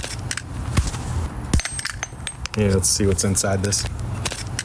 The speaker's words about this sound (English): This has been the death of an anti-theft device. Taken out with a hammer.